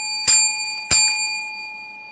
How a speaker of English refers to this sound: So here is the bell.